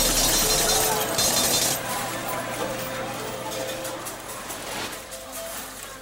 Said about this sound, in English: All right, the cha-ching of the cash register right there is what I'm hoping to be hearing later on tonight.